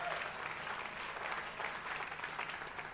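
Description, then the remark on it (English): An audience at a revival claps for Jesus together in a steady, dense wash of applause, many hands overlapping into a continuous crackling roar that holds an even loudness throughout. “Can you clap for Jesus to remember you?”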